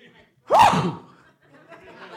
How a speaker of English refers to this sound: Oh, hold on, I got to sneeze.